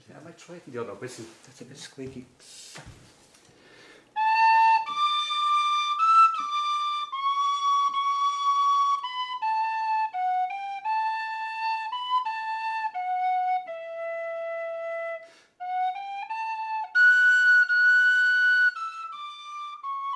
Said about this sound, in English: I was asked to play some music to symbolise the passing of the canoe from Ireland to Galway. So I played a slow air on the tin whistle. Every time he played it, somehow that's what really broke me up. I mean, I felt moved to tears.